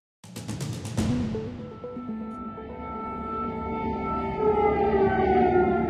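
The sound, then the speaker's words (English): Air raid sirens blare across Kyiv, Ukraine, as Russia attacks the capital, a sustained wailing tone that slowly rises in pitch and echoes over a low rumble, following a few sharp clicks at the start. “Air raid sirens blare in Kyiv as Russia attacks the capital and other cities across Ukraine, killing at least 12 people.”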